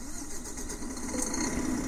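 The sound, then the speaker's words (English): A truck engine in a video game starts up and settles into a steady, low rumbling idle that grows slightly louder, with no one talking, as the truck is about to be parked in a car park space. “Just gonna start the engine and park in one of these spaces properly, and then I'll exit and save the game.”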